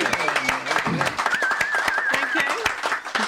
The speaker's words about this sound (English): Got engaged yesterday, so big round of applause.